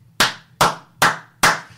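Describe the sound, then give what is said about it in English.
Four sharp hand claps in a steady, even rhythm, fairly loud, reenacting the applause given to Bernard Bresslaw as he walked down a street, with nothing else heard around them. “Saw it was Bresslaw, and randoms in the street started applauding him as he walked down the street.”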